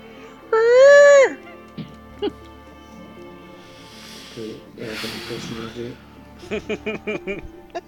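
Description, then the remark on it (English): A person imitates an elephant's roar with one loud, brassy, sustained vocal blast, followed by quieter speech and chatter. “Sounds like an elephant when he roars.”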